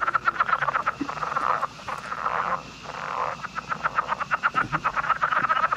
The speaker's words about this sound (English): But what frog are we listening to there? That's not a bad name for it, actually, but it's the southern leopard frog.